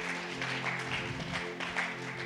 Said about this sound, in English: So can we give a round of applause to those people too? Можем мы поаплодировать этим людям также?